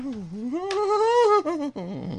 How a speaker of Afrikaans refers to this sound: Dit is die singende saag, die langspeler het nou uitgekom vir Kersfees, is by enige PNA of kom boeke te kry. Die singende saag. Kom ons luister nog 'n stukkie.